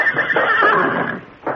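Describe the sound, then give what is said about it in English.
A horse whinnies loudly in one sustained, wavering neigh, with a brief snort or second burst at the end. “this horse gives me the willies.”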